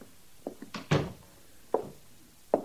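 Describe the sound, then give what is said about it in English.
An office door is pushed shut by a sergeant, a few light knocks leading to one solid thump, then two sharper clicks of the latch settling. No one speaks. “Close the door, Sergeant.”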